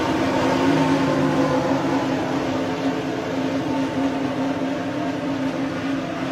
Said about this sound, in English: Renault engine sounds great too.